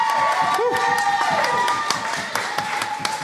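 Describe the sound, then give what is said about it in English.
An audience at a poetry slam applauding and cheering for the poets of the first round, with dense steady clapping, sharp louder claps standing out, and high whoops and shouted voices rising over the sustained roar of the crowd. “And I think another round of applause for all our amazing poets from the first round.”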